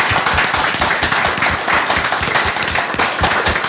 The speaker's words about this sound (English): Like, the work that you guys do is amazing, just how much things have evolved over such a short period of time. So round of applause, I think that deserves, don't you think?